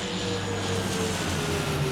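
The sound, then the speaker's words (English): A steady, loud airplane engine drone as the plane approaches the runway in Transylvania to land, with low humming tones and a broad rushing noise that holds evenly throughout, no voices present. “We'll be approaching the runway in 5 minutes.”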